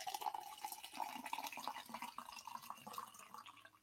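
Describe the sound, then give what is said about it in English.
Water pours steadily into a glass, a continuous gurgle and splash whose pitch creeps upward as the glass fills, lasting a few seconds with no voices. “Somebody get Mr. R a glass of water, says Sip Drink Milk Drop.”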